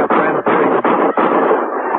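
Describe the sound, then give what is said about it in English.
Ammunition exploding in a burning house: loud, dense crackling and popping bursts that run together into a harsh roar, broken by three brief pauses. No voices. “That came from the house. Ammunition, maybe.”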